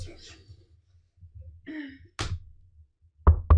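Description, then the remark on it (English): Knocking on a door: one sharp rap, a pause, then two quick loud knocks close together. Soft breathy vocal noises come before the knocks. “I once again cannot get to the door.”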